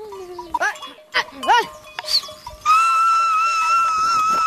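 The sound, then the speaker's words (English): Cattle low and the high voices of Maasai children call out in short rising cries as they herd the cattle, then a bright, sustained ringing tone like a bell rings steadily over the herd. “It's peaceful out here, in a place where some Maasai children are still being taught to call and herd cattle.”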